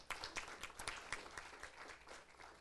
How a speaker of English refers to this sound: Let's have a round of applause to welcome our panel tonight.